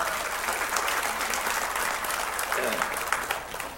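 An audience claps together in steady, dense applause that holds at an even, moderately loud level for several seconds, a crisp wash of many overlapping hand claps with no talking.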